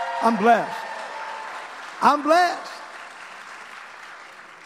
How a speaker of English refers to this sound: Could you give my wife a hand clap? She's a blessing.